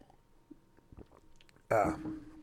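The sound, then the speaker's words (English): Quiet mouth noises of someone sipping and swallowing kefir milk from a container, a few soft wet clicks and gulps, followed by a sudden loud voiced exhale, like a satisfied 'ahh'. “But before I do, I'm going to take a sip of the not at all sponsored on this show, kefir milk.”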